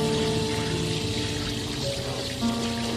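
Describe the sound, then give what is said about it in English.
Cool water pours steadily into a foot basin on a hot day for a few seconds, a continuous gushing with light splashing and a faint rising tone as it fills, no voices. “Cool water on a hot day.”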